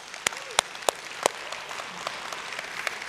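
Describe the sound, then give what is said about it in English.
A few scattered, sparse claps from a small audience, fairly faint, with four sharper claps early on and softer ones trailing off against a quiet background. “Stop for applause.”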